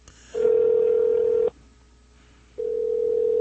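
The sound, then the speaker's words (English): A phone's outgoing call tone while calling someone back: a steady electronic beep sounds for about a second, pauses, then starts again, loud and clear with no one speaking over it. “I can call you right back. It only take a second”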